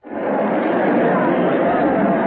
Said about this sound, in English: We are here on the Central Plaza. We are well off to the eastward edge. There's a kind of terrace over the crowd here. It is precisely 4 minutes to 12. The crowd is enormous. There might be 10,000. There might be more. The whole square is faces.